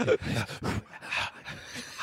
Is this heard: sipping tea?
no